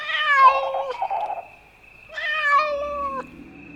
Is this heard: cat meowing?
yes